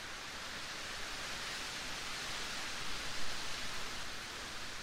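Steady rain falls in a soft, unbroken hiss, even and continuous for the whole stretch, fairly quiet with no voices or other sounds over it.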